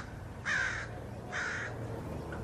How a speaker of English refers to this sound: When he was out here, he was out recording some sounds of crows.